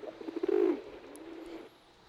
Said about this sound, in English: It's a pigeon.